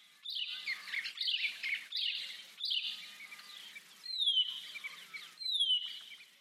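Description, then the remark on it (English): A Horsfield's bronze cuckoo gives its high, descending whistle call about six times in steady succession, each note sliding downward, clear, with no voices. “So horsefield bronze cuckoos in particular have this descending whistle call, which they'll do over and over and over again, and then you'll have a little break and then it'll go again.”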